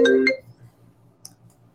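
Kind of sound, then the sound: signal or alarm, faceTime call ringtone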